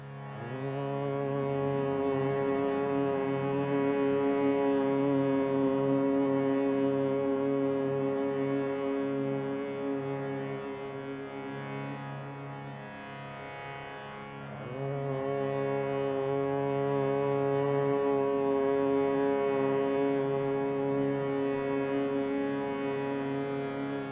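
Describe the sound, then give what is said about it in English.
During a chanting practice, a group takes a deep breath and hums the single note they hear, sustained, low, steady and fairly loud, fading briefly for a breath before a second long hum begins on the same pitch, as part of three hums. “And let's all take a deep breath in and hum the note you're hearing.”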